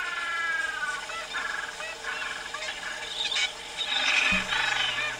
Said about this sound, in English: The music for this show is the sounds of the Falklands. So you'll be hearing sounds of gentoo penguins, elephant seals, caracara, which is Johnny Rook, king penguins, and rock hoppers.